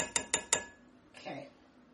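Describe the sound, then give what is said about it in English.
A metal spoon taps the rim of a cooking pot three times in quick, even succession, bright, followed by a soft scraping shuffle of powder and utensil as 4 tablespoons of arrowroot starch are spooned into the pot. “Arrowroot starch, 4 tablespoons. We've got it in our pot.”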